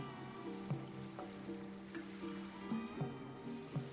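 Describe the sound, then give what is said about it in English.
Gentle flowing water runs steadily beneath a soft, sustained instrumental melody, with a few brighter plucked accents rising now and then. No voices are heard. “I love the water. Oh, the water sounds.”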